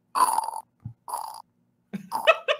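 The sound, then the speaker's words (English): A person imitates the loud purring breath of their pet Morris with a few rough, throaty voiced bursts separated by short pauses, ending in a quicker, wobbling run of snorty sounds. “And it's actually quite a loud breathing noise. Yeah, it's a little purr.”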